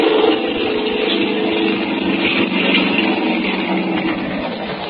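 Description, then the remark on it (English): A motorboat engine is started as the boat turns around and comes in, droning loudly and continuously, a steady rumbling hum with a slight rise in intensity partway through, with no voices over it. “Now he's starting the motor up. He's turning around the boat, and here he comes.”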